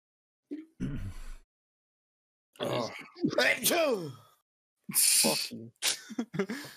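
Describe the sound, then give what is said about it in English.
A person sneezes: a drawn-out voiced intake builds up, then a sharp, hissy burst breaks out, with a few short breathy sounds before and after. “Bless you.”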